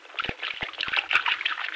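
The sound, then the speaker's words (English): Glowcoat self-polishing liquid floor wax glugs and splashes as it is poured onto a floor, a steady wet trickle broken by a few soft sloshing bursts, with no voices. “You just pour it out, do you? Yeah, like this, see?”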